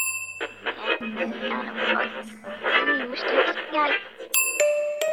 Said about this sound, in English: The silence was broken by the ding of an elevator bell.